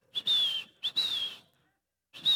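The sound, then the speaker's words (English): A person whistles three short, bright bird-like calls, each a quick rising note followed by a gently falling trill, fairly loud with brief pauses between them. “Birds fly by.”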